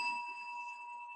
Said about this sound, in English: I'm still bringing compassionate quality to the sound of the bell. And then when the bell's gone, it's still existence. So it's the bell just helped me to realize this innate quality of hearing capacity, of this compassionate quality in me.